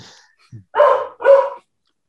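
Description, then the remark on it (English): A dog barks twice in quick succession, two loud woofs about half a second apart, with a brief softer sound just before and no talking. “Oh, dog agrees.”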